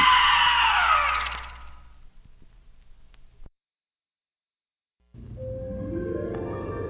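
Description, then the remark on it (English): A loud, shrill scream in a horror film trailer slides downward in pitch and trails off into near silence, then after a pause a second wailing cry swells up, harsh, with no talking. “Now scream!”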